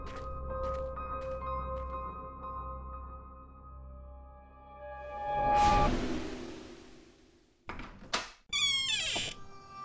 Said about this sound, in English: The farmhouse door creaked with age upon the turning of the knob.